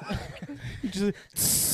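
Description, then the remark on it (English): After a short burst of voiced, laughing talk, a person makes a loud, steady breathy hiss imitating boiling water being poured; it runs to the end without a break. “Yeah, just put some boiling water.”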